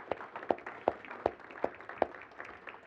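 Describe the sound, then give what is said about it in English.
A church audience claps for the ladies present at a morning gathering, a dense patter of many hands with a steady beat of louder claps landing roughly every third of a second, moderately loud, with no talking. “Can we clap for all of our ladies here this morning?”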